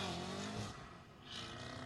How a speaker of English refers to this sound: Was big that burnout. What kind of car was that? A Cadillac. Okay. Yeah. Not your father's Cadillac.